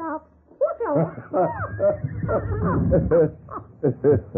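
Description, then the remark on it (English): A female parrot squawks and chatters in a rapid string of shrill, warbling calls with sharp pitch swoops, moderately loud, pausing briefly between bursts. “She's a very wise bird. Chiquita, talk to the nice man.”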